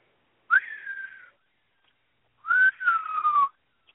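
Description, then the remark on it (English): Someone whistles with their mouth in two sustained, slightly wavering blasts, imitating a referee's whistle. The blasts are fairly loud, separated by a second of silence, with no talking. “Where's your whistle”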